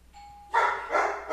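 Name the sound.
doorbell ringing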